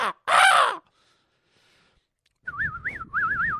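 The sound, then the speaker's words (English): A person imitates bird calls: a harsh, crow-like caw opens, then after a pause a warbling whistled trill rises and falls in quick loops, fairly loud. “One day I did his show and I did a bunch of bird noises because, you know me, I like to crack them out now and then.”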